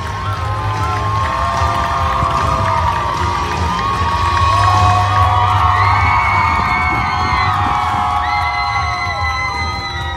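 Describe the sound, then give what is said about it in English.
A large crowd, a sea of plaid, cheers and shouts continuously as they approach a guest relations staff team, with high excited voices and whoops rising over a dense roar and scattered clapping, loud throughout. “So, you know, they're cheering, people are clapping.”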